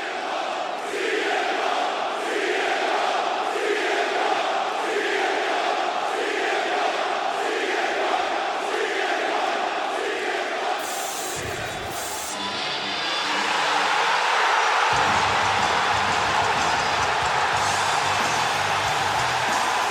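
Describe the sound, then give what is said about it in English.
A huge arena crowd at the United Center in Chicago roars continuously at a wrestler's return and entrance, with rhythmic surging cheers early on that swell into an even louder, sustained eruption of noise in the second half. “How much reaction can you get from the crowd upon your music playing or your entry into the arena?”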